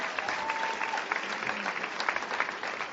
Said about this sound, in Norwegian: Ja, men da trenger vi klapp for den kvinnelige dykkeren.